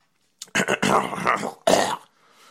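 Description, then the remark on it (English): A loud phlegmy cough with raspy throat clearing, coming in two rough bursts about a second apart, the second shorter, then trailing off into quiet. “How you beep with a cough? Got the phlegm.”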